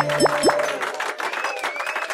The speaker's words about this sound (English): I got more applause for that one. You did, because you scored 80 points. I did. I did a straight.